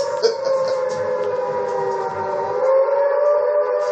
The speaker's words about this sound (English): Who would be attracted to the sound of a goddamn siren?